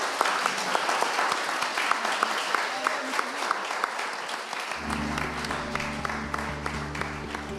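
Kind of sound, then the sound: crowd, audience applause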